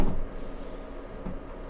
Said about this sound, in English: Oh, jeez, shut the fuck up. This creaky ass door.